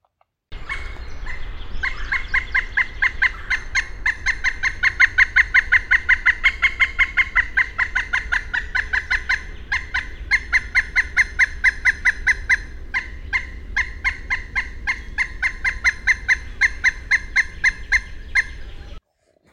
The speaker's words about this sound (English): I'm still not sure I could, so other call notes will be very helpful. Here are some other call notes of the pileated woodpecker.